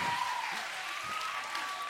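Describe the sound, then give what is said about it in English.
An audience claps steadily for about two seconds at a mention of using Sensodyne toothpaste, a dense, even wash of many hands at a fairly constant moderate loudness with no voices standing out. “Don't applaud that.”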